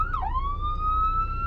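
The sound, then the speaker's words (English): An ambulance siren wails steadily as it passes by, its tone dipping briefly then holding a high sustained pitch over a low rumble of traffic noise, fairly loud. “And here's an ambulance.”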